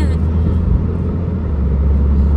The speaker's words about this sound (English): I don't have a really good tripod, so when you're hearing this, you may hear the car engine.